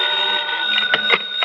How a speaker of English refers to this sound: I'd no sooner rolled over in the hope of getting back to sleep when the phone beside my bed started jangling again. Oh, nuts.